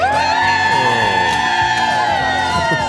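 A crowd on the Today Show plaza cheers and whoops loudly and steadily on a Monday morning, many voices blending into a sustained roar with higher shouts rising above it throughout.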